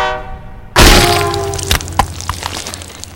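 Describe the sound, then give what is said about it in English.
A train horn blares as a train comes around a bend, then a sudden loud roar of the train rushing by on the tracks, with rattling, clanking metal over a steady rumble that slowly eases off. “I lay her body down on the tracks, just as the train appeared around the bend.”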